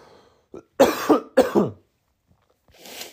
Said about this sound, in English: I think I'm dying. I think that's what's going on. I'm coughing. I'm losing my voice. I got a runny nose.